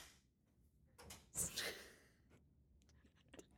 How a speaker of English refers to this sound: Let's do the clap again. 1, 2, 3.